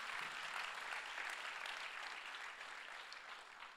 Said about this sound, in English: Come on, seven people are clapping right now. Come on, clap a little bit louder,